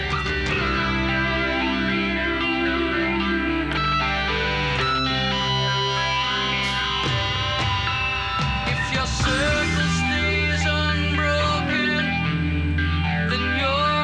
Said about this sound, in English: Cool effect on the guitar. Yeah. Mm-hmm. Yeah, it's almost like a fuzzy sort of chorusy sound.